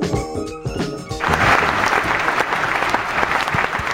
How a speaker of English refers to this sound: Thank you. Thank you. I don't think that was for you. Of course it was for me. It was applause.